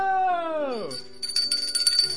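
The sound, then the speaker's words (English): A falling, sliding tone drops away, then a bright, high bell rings in a quick series of repeated jingling strikes for about a second, loud. “The bell of change has dawned a new day.”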